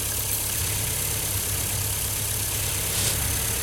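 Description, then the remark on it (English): A runabout's engine runs with a steady, low rumbling idle and a constant hiss on top, the level barely changing apart from a small swell near the end. No one speaks. “The runabout jolted forward, and I was thrown back against the leather seat.”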